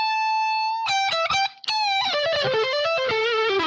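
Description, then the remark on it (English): An electric guitar with a light crunch of distortion plays a sustained note, then a quick burst of choppy strums and a brief gap, followed by a wavering melodic run, fairly loud. “Now, there's still some distortion on there, but there isn't much.”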